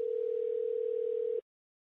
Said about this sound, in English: There we go. We ringing.